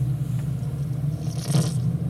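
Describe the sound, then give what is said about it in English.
A steady, muffled low drone of a car interior, picked up by a hidden surveillance bug planted on a man, the last recording before the bug went dead, with a brief scraping rustle at the microphone partway through. No voices. “They're in a car.”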